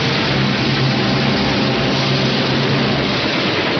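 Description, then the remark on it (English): A train coming from the other direction rushes past with a loud, steady roar, a broad hissing rumble over a low droning hum that holds constant throughout, with no voices. “Another train approaches in the other direction and passes.”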